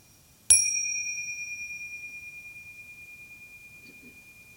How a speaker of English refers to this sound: So I'll ring a bell, simply to end the meditation.